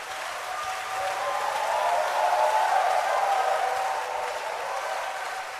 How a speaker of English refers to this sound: Clap your hands for Jesus. Keep clapping.